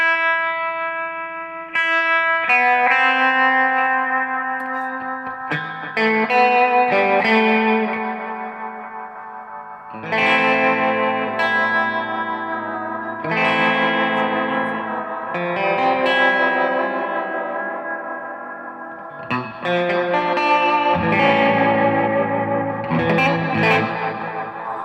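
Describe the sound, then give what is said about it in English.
Electric guitar played through a Death by Audio Echo Dream 2 echo pedal, sustained chords smearing into repeating, washy delays with a chorused, slightly distorted shimmer, loud with no voices. “This over here, this is my Echo of choice at the moment because it's kind of weird. And it's made by Death by Audio, and it's called an Echo Dream 2.”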